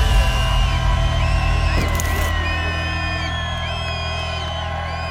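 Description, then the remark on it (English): A dense, roaring FBS college football stadium crowd cheers steadily, with whoops and yells rising above the constant wall of noise. It stays loud for the whole stretch, with a brief sharp burst in the middle. “Absolutely amazing, the crowd.”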